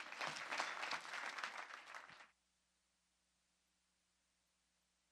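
An audience applauds with dense, steady clapping for about two seconds, then it cuts off abruptly into near silence with a faint low hum.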